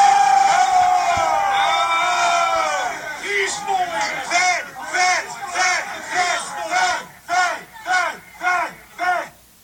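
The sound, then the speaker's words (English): A large rally crowd at the Capitol, suspicious that federal agents were infiltrating the rally, shouts and cheers, the loud sustained yelling soon breaking into a rhythmic chant of repeated short group shouts, roughly eight in steady succession. “Oh, Congressman, the crowd was highly suspicious that the feds were trying to infiltrate the rally there.”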